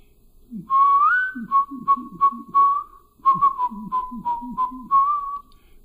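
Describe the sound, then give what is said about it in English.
A man whistles a lively tune from Fiddler on the Roof, a clear melody of short repeated notes and a few sustained, sliding pitches, with faint breathy low sounds underneath and no speech. “And so I'd come down the hall, and I would whistle that,”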